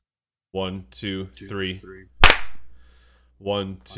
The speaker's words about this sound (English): Excellent. A clap sync, everybody.